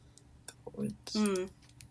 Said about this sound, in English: I'm typing this all down.